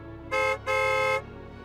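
A tram horn sounds twice as the tram is ready to depart, a short toot followed by a longer blast, with a bright, buzzy tone over a steady low rumble of the vehicle.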